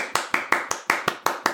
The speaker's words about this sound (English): I did. My audio caught it. Discord did not catch me clapping, but you'll hear it in the audio, I promise.